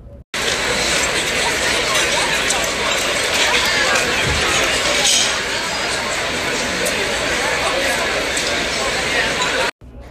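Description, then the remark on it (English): A busy restaurant in San Antonio, steady background din: many overlapping voices chattering indistinctly while dishes and cutlery clink now and then, holding an even, dense level for nearly the whole clip. “I made this sound by recording a restaurant in San Antonio.”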